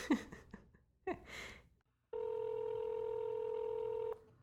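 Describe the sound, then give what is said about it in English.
Telephone dialing tones as someone calls a friend who has not been answering: a few quick, uneven beeps and clicks, then one steady, mid-pitched electronic tone that holds loudly for about two seconds before cutting off abruptly. “Okay, if she doesn't answer this one, then she is no longer my friend.”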